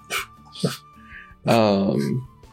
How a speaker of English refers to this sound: Hello, pupper. A dog. Behold. She's standing there, just quietly chuffing at me.